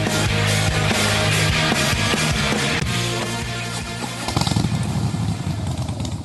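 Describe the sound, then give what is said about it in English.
A Harley-Davidson Pan America motorcycle engine rumbles loudly with a deep, steady throb, then revs up harder near the end, its rough growl swelling in bursts. No one speaks. “Who needs a rev up? For Harley Heaven, the Harley Davidson Pan America is coming to Harley Heaven in Melbourne, Dandenong and Ringwood.”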